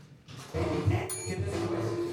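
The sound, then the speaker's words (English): A bell rings out after a brief quiet start, its sustained tones humming steadily while bright, high shimmering partials flash in about halfway through and the ringing carries on to the end. “That's a good bell.”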